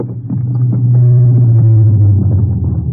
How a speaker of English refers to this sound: And there's a car coming now,